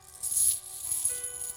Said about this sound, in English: This isn't real silver, right? It's not real silver. This is just fake coins.